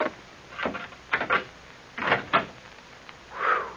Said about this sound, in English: This is the door, I think.